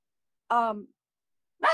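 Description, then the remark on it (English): A dog gives a short, tonal bark, then a second bark starts after about a second of silence and is cut off. Both are loud, with no talking over them. “And hold on, let me let my dog just say.”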